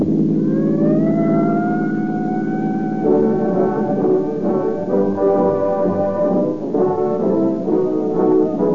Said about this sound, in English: Tonight, there are thousands of police and sheriff's cars out on the streets and roads, pursuing criminals or cruising watchfully, ready to dash with sirens screaming to the scene of any emergency.